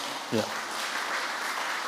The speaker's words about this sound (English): Say, moreover, oh, you can clap.